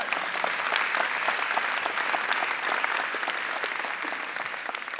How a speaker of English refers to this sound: Thank you, my son. Okay, give him a round of applause.